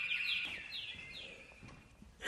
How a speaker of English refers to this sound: Now, occasionally you get a really loud bird and you cover them up so they'll stop singing.